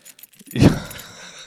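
A close, loud jangle of keys shaken right against the mic, a bright metallic burst that peaks early and then rattles on more softly, with no voices.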